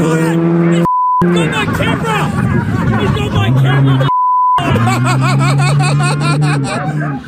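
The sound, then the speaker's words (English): Two short, steady censor bleeps cut sharply into loud, excited overlapping voices in a pit lane, bleeping out swearing, each briefly replacing the speech before the chatter and background noise resume. “Some great pit lane language there”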